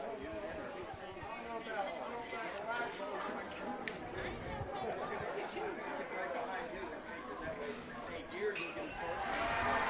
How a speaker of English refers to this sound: Dang, there's lots of cheering. I can't tell if it's good cheering or bad cheering for, well, who's it for, but there's a lot of action going on over at the baseball field.